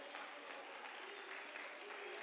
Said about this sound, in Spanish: Dale palmas al Rey con el corazón.